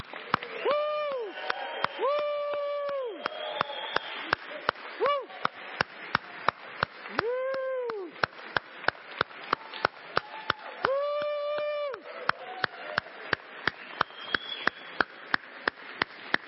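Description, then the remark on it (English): An audience claps in a steady, fast rhythm while voices whoop and cheer in rising, falling bursts over the top, lasting throughout at a lively, fairly loud level. The audience is cheering for the mothers as they stand up on Mother's Day. “So moms, if you'll stand up, and guys, on the count of three, we're going to cheer for all of them.”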